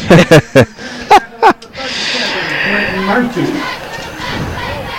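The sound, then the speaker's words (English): A few loud, sharp shouts burst out, then a large stadium crowd at a football game swells into a sustained roar of cheering after a kickoff return, holding steady and full to the end. “That was kind of a big crowd there.”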